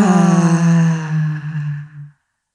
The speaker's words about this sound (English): and begin to notice your breath, your sacred breath, breathing in through your nose and out through your mouth with sound.